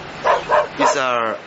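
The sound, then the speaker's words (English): A dog on the rooftop of the Orchid Hotel in Phuket gives three quick, sharp barks in a steady rhythm, then lets out a longer, drawn-out whining yelp. The sound is clear. “These are noisy from the dog from the rooftop.”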